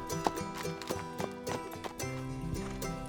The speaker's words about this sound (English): He mounted his horse, then began a patient trot after his prey.